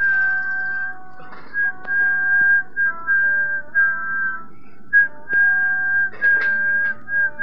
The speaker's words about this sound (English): Does he think he's whistling the same tune? Most likely. Pretty good.